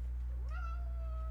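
cat meowing

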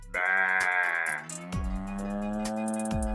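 sheep bleating

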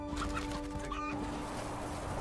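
rooster clucking

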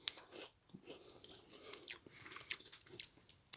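chewing a crunchy snack

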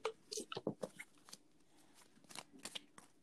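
shuffling oracle cards

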